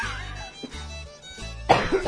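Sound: cough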